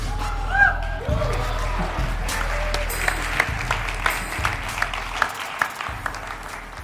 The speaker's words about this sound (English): Patronizing applause is welcome here.